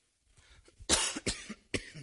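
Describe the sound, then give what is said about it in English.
A loud cough comes in a few sharp bursts, with a couple of quieter throat-clearing sounds between them. “Excuse me for the cough.”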